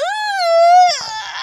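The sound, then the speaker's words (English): A person lets out an exaggerated, drawn-out vocal yawn: a high, steady, tuneful tone lasting about a second that trails off into a breathy, airy exhale. “You like it when I yawn like that?”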